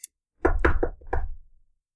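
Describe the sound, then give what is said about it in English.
Four firm knocks on a door in quick succession, the last one after a slight pause. They sound solid, with no voices. “Knock, knock, knock.”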